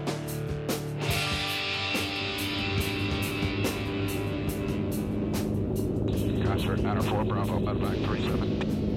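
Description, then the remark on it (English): A military helicopter on a combat mission in the Vietnam War, its engine droning steadily with a rhythmic rotor chop throughout. Muffled voices blend into the loud, continuous mechanical roar. “The helicopter mission we're hearing the sound of right now”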